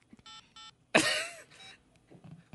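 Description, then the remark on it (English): Two short electronic cell phone keypad tones beep in quick succession as a number is dialed, followed by a sudden loud, harsh cough before things fall quiet again. “Hey, look, I'm going to dial it right now.”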